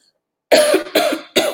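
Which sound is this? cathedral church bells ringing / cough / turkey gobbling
cough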